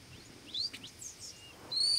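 Birds sing and call across the open bay of the Baie de Somme, thin high whistles and chirps overlapping, including warning, contact and location calls, with a brief brighter call near the end over a soft, low ambient murmur.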